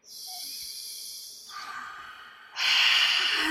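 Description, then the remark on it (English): A slow, deep belly breath drawn in with a soft airy hiss, then pushed out in a louder, rushing exhale, with no talking. “Seriously, take a breath in your belly and let it expand.”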